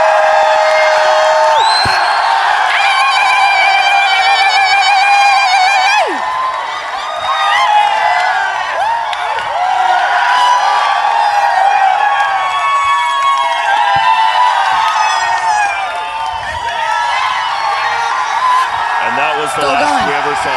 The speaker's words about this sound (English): So I figure, round out this panel, I can grab two microphones and run through the crowd, and you guys can cheer as loud as possible if you want to do that.